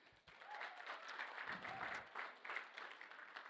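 An audience claps steadily, a dense wash of many hands sustained for several seconds with no one speaking over it.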